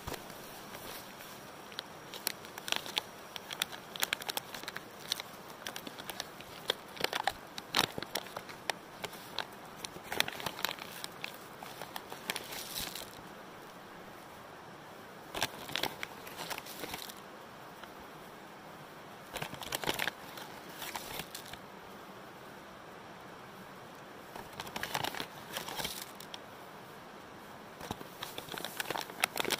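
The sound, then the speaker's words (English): Coffee grounds being scooped into a coffee maker: clusters of crisp scraping and rustling bursts with short pauses between, moderately loud, and no one talking. “Is there a formula for how much coffee you're supposed to put in?”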